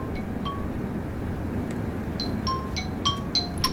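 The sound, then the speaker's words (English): A creepy phone ringtone: sparse, eerie high chiming notes ping irregularly, growing busier toward the end, over a steady low rumbling background hiss. No one speaks. “That ringtone's fucking creepy.”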